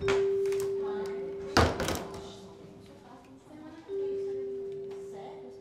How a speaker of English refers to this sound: So by the time he arrives, in this hallway, no, you're on time. He's ready. I'm ready. When the door opens, he walks in.